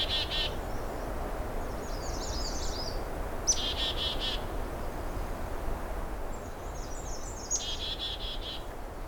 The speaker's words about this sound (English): Oh, chickadee found me. Not too happy with me being here, I guess.